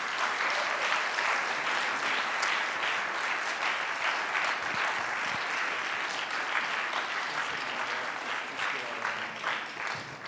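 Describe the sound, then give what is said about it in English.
A crowd claps steadily for about ten seconds as a team comes forward, a dense, continuous wash of hand claps at even loudness with no voices standing out. “You guys can give them a round of applause here.”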